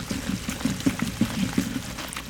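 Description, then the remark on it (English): Hot sugar-and-water syrup from a large copper pot pours steadily into corn syrup in a bowl, with soft glugging pulses and a low, continuous flow lasting a couple of seconds; no one speaks. “And the hot mixture is now going into the corn syrup.”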